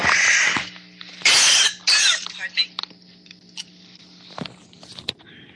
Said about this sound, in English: Excuse me, I need to cough.